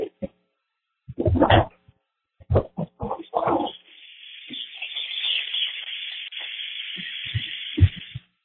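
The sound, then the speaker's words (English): A Jeep's engine cranks in a few rough, uneven bursts, then catches and settles into a steady, airy running hum, broken by occasional dull thumps. “I'll try to give you guys a listen to her now as she purrs.”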